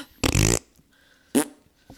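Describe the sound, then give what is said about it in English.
Two wet, buzzing raspberries blown with the lips close to the mic: a loud, longer one, then after a pause a shorter, sharper one. A voice imitating fart noises, with no talking. “And you'll learn a lot more from that episode than you do from any of the episodes where it's just the two of us farting out of our mouths into the microphone.”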